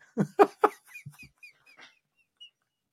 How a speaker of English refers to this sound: But, at Uncle Albert says, what's with that fucking dog?